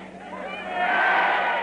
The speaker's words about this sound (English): And we can just glimpse Her Majesty coming round the corner now of the deck, and she's just approaching the top of the gangway, and listen to that welcoming cheer.